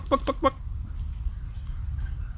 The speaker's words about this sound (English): Not maintaining an enigmatic silence, that chicken. Not very good for the old ambience, is it? Just having a, you have to trust me that there's a chicken here. I'm not a madman. Just imagining a chicken.